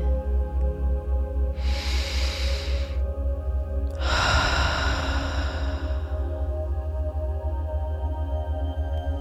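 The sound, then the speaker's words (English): Two slow, gentle breaths, a soft airy inhale followed by a longer exhale, rise and fade over a steady, low humming drone. No one speaks. “Breathing gently and continuously.”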